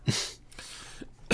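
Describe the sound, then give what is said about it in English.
A short, sharp, genuine cough bursts out, a single explosive puff of breath with a quick follow-up, then fades into quiet. “I wish that was a comedic cough, but that was actually a genuine cough.”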